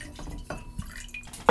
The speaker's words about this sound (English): So I'm going to pour it. Where's the mixing glass? There it is. 2 ounces of gin.